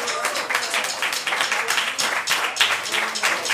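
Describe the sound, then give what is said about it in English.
An audience at an open mic night in Monterey County breaks into a round of applause for themselves, many hands clapping in a dense, steady wash of sharp claps that holds fairly loud for the whole few seconds, with no one speaking over it. “Go ahead and give yourselves a round of applause.”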